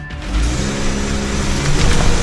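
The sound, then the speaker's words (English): A car engine revs and accelerates away, a steady rumble with a low droning tone that grows slightly louder over a couple of seconds, with no voices. “The car takes off, and police make their move.”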